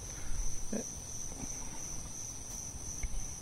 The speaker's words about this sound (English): Now, if you'll listen, you can hear there's a lot of crickets, a lot of bugs around here. This is Mississippi. We grow a bumper crop of them every year.